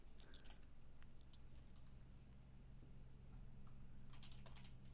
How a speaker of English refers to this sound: Oh, you're typing. Mm-hmm. I have an idea, but I'm waiting for you to stop typing.